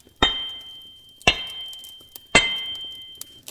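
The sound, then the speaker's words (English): Three loud hammer strikes on metal while forging a blade, spaced about a second apart, each a sharp impact followed by a brief high metallic ring that fades before the next blow. “I think 3 hammer strikes should suffice, if you would.”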